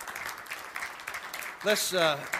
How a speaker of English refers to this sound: Put your hands together. Give the Lord a hand clap.